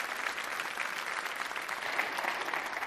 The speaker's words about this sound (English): Hey, give these guys a huge round of applause. Thanks, guys. Appreciate it very much.